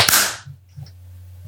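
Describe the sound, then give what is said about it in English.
A single sharp hand clap, made to sync a recording, cracks out at the start, bright and loud, ringing off quickly into a low steady hum with no voices. “I hadn't started recording until the final clap, which I feel like won't be too helpful.”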